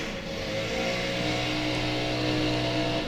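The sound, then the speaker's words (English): A lawn mower engine drones steadily outside, a continuous buzzing hum that holds at an even, fairly loud level throughout with no voices. “Someone's mowing outside.”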